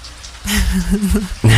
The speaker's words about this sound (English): But I'm loving the rain sounds. I was just about to say. Oh, this is nice. And it's getting a bit cloudy. Yeah, we can feel it cooling gently. Cool breeze.